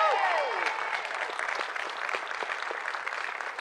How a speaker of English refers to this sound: Visit Milwaukee deserves a round of applause. Visit Milwaukee.